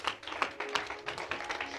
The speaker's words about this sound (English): Oh, this is a good place to clap for Jesus.